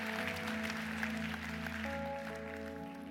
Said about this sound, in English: And then, let's applaud for him one more time.